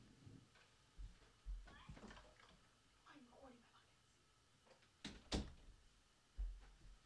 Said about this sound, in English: I'm going to close the door because it's going to get loud if I don't. So hold on one quick sec, y'all.